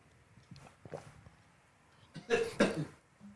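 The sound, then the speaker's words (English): A cameraman coughs twice in quick succession, loud, after a stretch of faint clicks and soft background noise. “Where's the cameraman coughing?”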